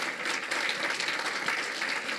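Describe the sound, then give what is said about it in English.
An audience applauds steadily for those who prayed a prayer, dense overlapping claps forming a continuous wash of sound throughout, moderately loud with no speech. “Let's all applaud them that prayed that prayer.”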